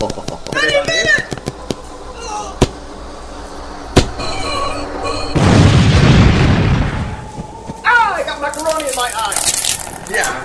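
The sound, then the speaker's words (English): A single loud cartoon explosion bursts out mid-clip, a roaring blast of noise lasting about two seconds, with animated voices chattering and squealing before and after it. “I feel like I'm gonna explode! Oh, stand back for the explosion, everyone.”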